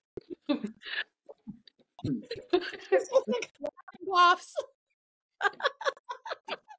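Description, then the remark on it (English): Someone laughs so hard it breaks into coughing: choppy bursts of breathy laughter and rough coughs, a shrill squealing peak midway, then a few more gasping laughs after a short pause. “I love when you laugh so hard you cough.”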